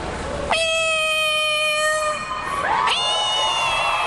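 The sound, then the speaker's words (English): A woman's voice imitates a cat with a long, loud, drawn-out meow, followed by a second rising meow, clear with no other talking. “I love cats. I love animals. I would love to mimic a cat.”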